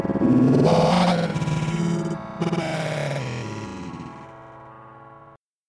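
Eerie, ringing choir-like voices layered in heavy reverberation at the opening of a piece of music, holding dense sustained tones that start loud, waver and thin out before cutting off abruptly.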